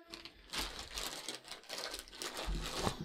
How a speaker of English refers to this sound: Stop that rustling. Yeah, it's a corn chip. Corn chip. But they're kind of a special kind of corn chip.